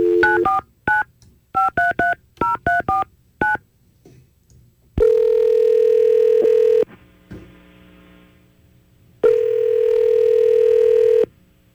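A rapid series of touch-tone dialing beeps in quick bursts, followed by two long, steady ringback tones with a pause between them, with no talking; a phone call placed by the Y100 radio show.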